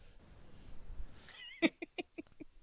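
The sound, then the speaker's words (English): A cat gives a short, rising meow followed by a quick run of five or six clipped chirping calls, fairly loud, with no one talking. “Come here, kitty bride.”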